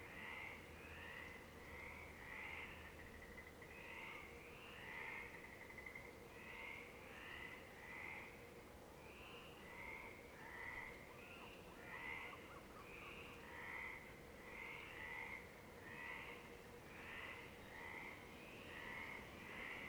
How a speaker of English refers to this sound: Monterosso, Italy, 1 a.m. A village perched above the ocean is gifted with songs of frogs.